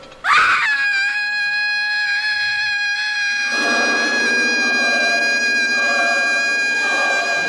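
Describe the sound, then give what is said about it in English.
A woman lets out a single piercing, high-pitched scream that holds steady for several seconds, loud, while a dense rumbling background swells in underneath about halfway through; it is a reused pre-recorded scream. “I hate that we've used that scream from Hush that Sarah Michelle Gellar definitely didn't do for the third time in this fucking show”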